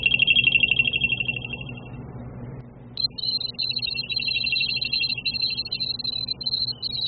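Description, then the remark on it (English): CE5 contact tones, including the Mount Shasta tones: high electronic tones warble steadily, fade out, then return after a brief gap as a pulsing, beeping pattern over a low droning hum. “So, we're going to initiate the main CE5 tones. We'll go through, activate the Mount Shasta tones.”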